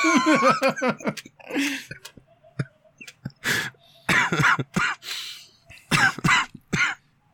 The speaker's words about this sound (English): Goodness. I'll try and edit out that cough, but...